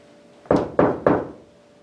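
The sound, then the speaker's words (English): Three firm knocks on a wall by a person, evenly spaced about a quarter second apart, each a dull, resonant thud with a brief decay, against a quiet background. “So I'm going to knock on the wall here 3 times, and I would like for you to replicate it.”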